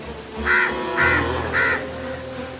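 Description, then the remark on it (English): A crow caws three times in a steady rhythm, each call harsh and raspy and loud, with no voices around it. “But you are a crow too. How can you call crows ugly?”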